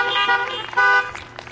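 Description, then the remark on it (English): Several car horns honk at once in overlapping, sustained blasts, a bright harmonic blare that swells louder midway and then trails off into scattered beeps. “Clap your hands, beep your horns.”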